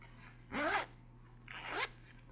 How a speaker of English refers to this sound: I'm wearing one of my new sportswear jackets. It's very light. It's very sexy. It's a zipper. And when you zip it down, it just says, there's this little piece of cloth behind it, and it just says yes right there.